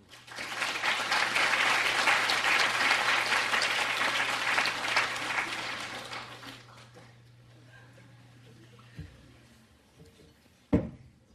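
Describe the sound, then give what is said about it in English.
An audience applauds a speaker loudly for about six seconds, the clapping dense and steady before fading into scattered claps, murmurs and shuffling. “Look, I'm terribly sorry for starting all this applause thing.”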